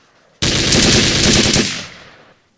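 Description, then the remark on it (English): A loud burst of automatic gunfire, rapid shots blurring into one continuous roar for over a second before trailing off into an echoing decay. No voices are present. “Can I just get a gunshot, Uzi or something, man? AK?”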